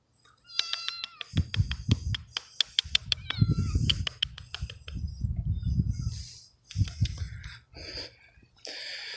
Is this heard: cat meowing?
yes